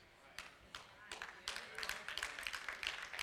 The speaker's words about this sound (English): I got three hand claps.